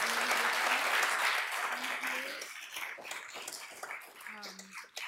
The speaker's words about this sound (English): Thank you both so much. Can we give them both a round of applause?